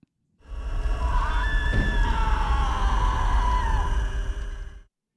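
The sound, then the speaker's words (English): Sustained, wavering screams rise and fall over a dense, ominous horror-film score with a deep rumbling drone, loud and unbroken for about four and a half seconds before cutting off. “The music is probably the only real clue to this one.”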